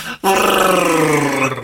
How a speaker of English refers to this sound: Insert car sound.